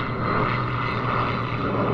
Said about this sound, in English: So, I want to know, oh, let's let the airplane pass. Okay.